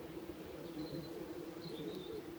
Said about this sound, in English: so you get lots of individual nest burrows together on a sandy bank in the sun. And there's a nest site in the village with hundreds of these lovely little bees buzzing around in front of the entrance holes.